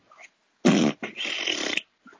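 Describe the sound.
A loud fart noise: a short buzzy blast followed by a longer, sputtering, rasping stretch lasting nearly a second, with brief faint sounds before and after.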